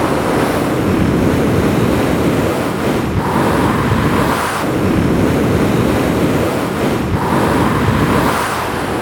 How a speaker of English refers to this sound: Yes, the wind whistles across the plain, but apart from that, the lake lies silent most of the time.